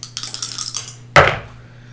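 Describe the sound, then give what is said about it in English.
Big dice rolled for a perception check rattle and clack across a hard surface: a quick run of light ticking knocks, then one louder clattering burst that fades out over about half a second. No one speaks. “Everyone roll a perception check.”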